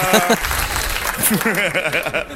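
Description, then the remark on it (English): An audience claps in a steady, dense wash of applause for a couple of seconds, with a few voices whooping and laughing over the clapping toward the end. “And it's going, don't clap.”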